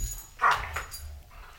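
A dog in a dog playroom lets out a few short barks and high whimpering yelps in quick succession over a low rumble, with no one talking.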